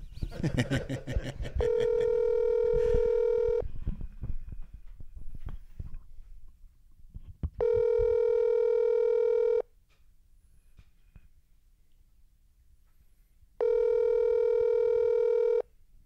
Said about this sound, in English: Here, let me give him a ring.